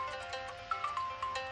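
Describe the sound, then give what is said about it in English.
A phone ringtone chimes for an incoming call, a short repeating melodic pattern of bright tones, steady, with no voices over it. “Oh, we've got a phone call coming in. We have a phone call coming in.”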